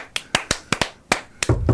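A quick series of about eight sharp, hollow knocks on wood, fairly loud, tapped in an uneven rhythm with short gaps and no voices.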